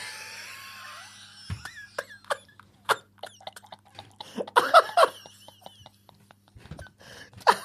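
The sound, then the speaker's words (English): Irregular, wet breathy huffs and sharp gulping clicks as a thirsty person drinks and breathes into a glass, with squeaky, hollow-sounding breaths at the start and a louder cluster of gulps and gasps near the middle, no talking. “When he's really thirsty and you can hear him breathing in the glass.”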